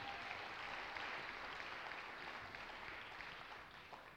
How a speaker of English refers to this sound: Hey, how great were the worship team today? You guys are doubly blessed with incredible pastors, which you have, and a great worship team as well. Why don't you give these guys a huge round of applause?